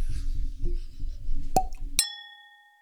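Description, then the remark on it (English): Ice rattles and pours into a glass over a low rumble as a drink is refilled, then two sharp clinks ring out, the last one leaving a clear, bell-like glass tone that slowly fades. “So we're gonna refill and we're gonna be right back. Chomping ice.”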